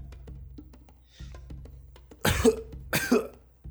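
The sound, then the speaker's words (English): Two rough, wet-sounding coughs in quick succession, fairly loud, performed by a person voicing a bloodied, battered, chained character who coughs blood and wipes his mouth, over a quiet background with a faint low hum and no speech. “Kind of he coughs and wipes his mouth, and you see there's a little bit of blood on his hand.”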